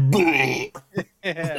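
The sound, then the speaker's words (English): Someone beatboxes: a drawn-out, throaty voiced buzz followed by a few short, punchy mouth-percussion bursts, loud and choppy with brief gaps between them. “I'm gonna beatbox.”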